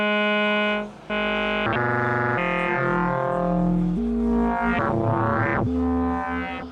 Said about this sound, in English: And that is kind of the core of how you build a sound with frequency modulation, amplitude modulation, and wave shaping and wave distortion, instead of just trying to take a sound and then carve what you don't like out of it.